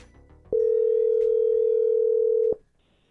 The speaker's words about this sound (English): All right, it's ringing. Okay.